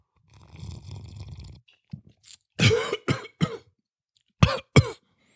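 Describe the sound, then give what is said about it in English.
A low, gravelly throat rumble gives way to a run of harsh coughs: three in quick succession, a short pause, then two more sharp hacks. No one speaks. “If I don't burp and cough, I mean, what are you going to say?”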